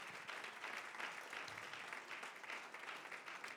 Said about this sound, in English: If you believe that, would you clap your hands to the Lord?